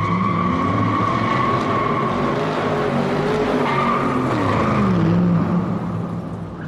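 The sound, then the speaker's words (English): A loud, drawn-out tire skid screeches for several seconds over a roaring car engine, the squealing pitch wavering before the sound tapers off at the end, with no voices. “I would say like maybe it was like and then like a car crash.”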